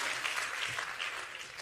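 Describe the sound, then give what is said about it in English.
A crowd claps steadily, a dense wash of many hands with no clear individual beats, sustained at an even, moderate level throughout. “Clap your hands real quick and let it settle in you.”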